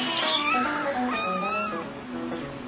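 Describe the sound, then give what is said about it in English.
Two cats meow back and forth, their drawn-out, wavering cries overlapping and rising and falling in pitch. The sound is steady, moderately loud and slightly muffled, with no talking. “You just said two cats meowing?”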